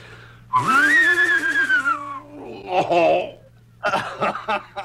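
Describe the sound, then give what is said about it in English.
Mel Blanc imitates an English horse: a long, loud, wavering high-pitched whinny, then shorter fluttering, snorting vocal bursts with brief pauses between them. “When it came to that spot, I thought I'd do an English horse. And he sounded a little like this.”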